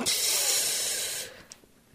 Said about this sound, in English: Ooh, it's the deep hiss on that one.